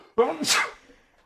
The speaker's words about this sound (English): I'm going to sneeze. Sneezing isn't directly tied.